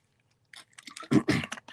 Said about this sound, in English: Let me take a swig of water if you don't mind.